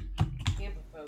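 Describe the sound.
A few quick taps on a computer keyboard, two sharper clicks close together and then softer ones, moderately loud over a low background hum with faint voice-like murmur.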